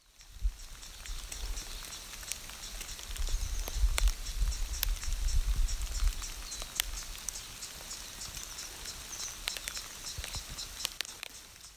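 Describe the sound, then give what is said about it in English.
Water trickles and splashes steadily down the layered tier tubs of the Little Caliente hot spring, from the top tub where the water feeds into the two below, with scattered sharp drips and a soft low rumble of flow that swells in the first half. No one speaks. “It's got the top where the water feeds, and then the water leaves that one and goes down to the two below.”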